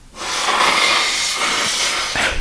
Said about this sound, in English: I need to blow my nose.